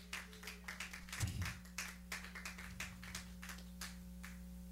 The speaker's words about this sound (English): Yes, if you want to clap, clap.